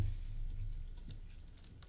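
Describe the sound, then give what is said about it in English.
A few quiet, irregular key taps on a computer keyboard, scattered over a low steady hum, with no one speaking. “This keyboard sucks.”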